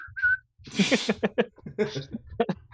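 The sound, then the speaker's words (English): A person gives a brief, high whistle once at the start, short and fairly clear, then a burst of breathy vocal sounds follows. “With it's a like, quick whistle. Give a little whistle.”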